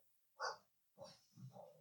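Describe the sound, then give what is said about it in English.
A dog named Bella grumbles in three short, low, throaty bursts: a sharp first grunt, a pause, then two rougher rumbling sounds in quick succession, with no other noise around them. “Even the dog's pissed off about this.”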